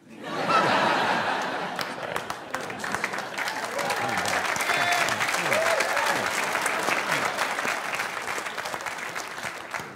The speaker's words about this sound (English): I like those claps. Thank you, thank you.